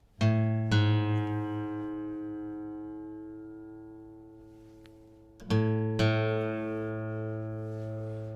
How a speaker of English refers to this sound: A little trick that you can use is to keep your notes ringing out while you reach up with your right hand and tune that string. You'll hear them come together just like this.